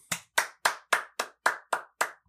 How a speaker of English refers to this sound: I love how you're clapping at least 6 inches from the microphone. Yes. We're on a strict regimen of I have to be closer, you have to be further the fuck away.